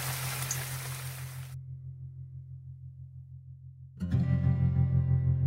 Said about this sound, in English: Well, looks like we have a thunderstorm. I think I better go inside. Look at all this water. It is amazing. This is awesome. This is really helping with the drought around here. This is crazy how much rain is pouring off the roof. Can you hear it?